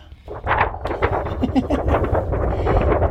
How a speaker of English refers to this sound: So, now, hand me this. Put this on the table. Thunder.